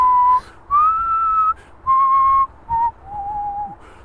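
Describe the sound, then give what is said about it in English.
A single person whistles the slow, clear melody from a Hovis bread commercial, several sustained notes with short breaks between phrases, fairly loud, with no talking. “That was the music from the Hovis commercial.”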